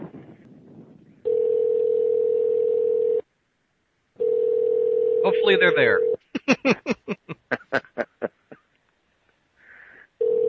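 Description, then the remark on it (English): A phone line rings with two long, steady electronic ringback tones separated by silence as a call is placed to a guest, followed by a quick run of short, sharp beeps; a voice briefly speaks at the start, faint under the line. “It's ringing.”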